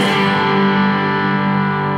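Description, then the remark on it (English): A sustained electric guitar chord overdriven through a Protein drive pedal, green side on at low drive with the blue side added, rings out loud, its gritty distortion holding steady with rich harmonic tones for the full two seconds, no voices present. “Yeah, just get a little bit more drive. And then you can still hear a lot of those, you know, tones in the chords.”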